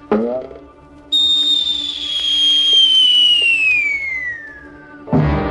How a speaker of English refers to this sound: He saw that he could not get away, so he quickly took his whistling arrow, fitted it into his bow, and before anybody could stop him, he shot it high into the air toward the camp of his men.